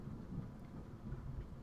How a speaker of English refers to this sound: Is it thundering over there? Yes, so that in the Because it's thundering background, over here too. you can hear it, and I'm sure the mic's gonna pick up on it, but it's coming down pretty hard here, so.